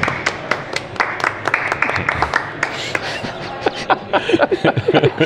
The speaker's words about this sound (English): Golf clap for you.